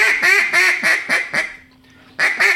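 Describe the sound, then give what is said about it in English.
A duck call blown in a quick series of raspy hen mallard quacks, about five evenly spaced, a brief pause, then more quacks resuming, loud with no talking. “Flat quack. Fine duck. Coarse duck. Raspy duck. Boss hen.”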